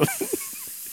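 A steady, even hiss of white noise runs unbroken for the whole second, with a few faint low blips early on.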